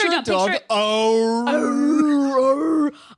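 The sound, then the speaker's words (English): A human voice imitates a dog, giving a short yip followed by a long, wavering howl that rises and falls, loud, lasting about three seconds. “I'm trying to trick you into thinking the dog's there.”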